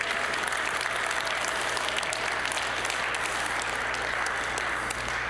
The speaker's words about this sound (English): And I was reminded again how thankful I am for the people that show up early at our office on a Sunday morning to make coffee for y'all. So could we just give a round of applause for our coffee makers?